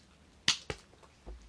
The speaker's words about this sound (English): We're slapping our thigh. We are not jacking off. Yeah. That's a thigh.